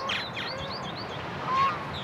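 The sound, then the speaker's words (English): Birds call outdoors by Brush Creek in Kansas City over a steady wash of background noise, with a few nasal duck quacks and honks scattered among the chirps, not loud. “that duck gave the man a new lease on life.”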